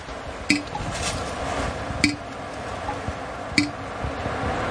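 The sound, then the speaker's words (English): Three clear drops of maple sap plink into a metal bucket at a slow, steady pace about a second and a half apart, each with a short metallic ring, over a soft outdoor hiss. “That's a pretty good drip.”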